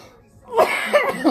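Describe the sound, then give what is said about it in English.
A person coughs several times in quick succession, fairly loud, each burst harsh and breathy with short gaps between them. No speech. “Damn, your boy already high. Hell, like coughing. Up a lot.”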